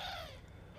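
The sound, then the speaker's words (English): A single short, harsh bird call rings out, a raspy squawk that fades quickly into a low background rumble, with no one talking. “Even that bird is pissed off at you now.”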